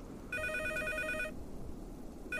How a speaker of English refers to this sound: I didn't have to, unfortunately, as my cell phone rang.